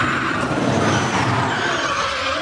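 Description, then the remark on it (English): A car performs a reverse entry slide with a sustained, loud tire squeal over a roaring engine, the screech holding steady for a couple of seconds with no voices; driven by professional driver Ken Block on the Las Vegas Strip, shut down for the stunt. “Well, the most dramatic reverse entry slide.”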